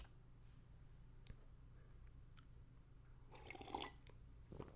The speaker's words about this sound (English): Quick sip of water, boss. Water break, boss. Don't mind me, boss.